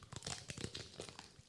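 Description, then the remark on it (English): Crunching as chocolate is bitten and chewed: a quick, irregular run of crisp, crackly bursts, fairly quiet, with no talking over it. “That crunch, mama.”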